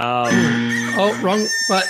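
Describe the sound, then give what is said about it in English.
A voice imitates a rooster crowing, a single drawn-out cock-a-doodle-doo with rising and falling pitch, fairly loud, lasting under two seconds. “It is a rooster.”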